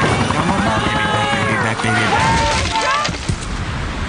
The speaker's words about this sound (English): I believe that the sound effects that you're hearing are, it's a helicopter over a deserted island